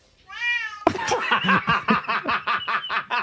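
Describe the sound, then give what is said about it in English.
A cat lets out a drawn-out, wavering meow, then a loud, rhythmic song kicks in, with bursts of sound pulsing along in a steady beat. “Get that cat on a talent show.”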